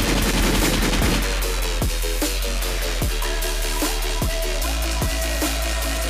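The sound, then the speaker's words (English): Gunshot sound effect: a rapid, chaotic burst of gunfire at first, then several loud single shots fired at irregular intervals over a dense, rumbling background with no talking. “Gunshot.”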